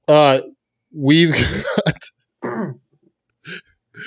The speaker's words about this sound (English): Excuse me if I keep clearing my throat.